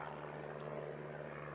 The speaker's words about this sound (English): Just after 10 a.m., the plane began its approach to Lunkin. It was still 10 miles short of the airport as it sailed over the Cincinnati suburb of Montgomery.